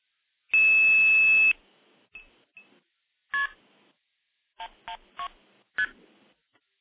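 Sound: telephone dialing tones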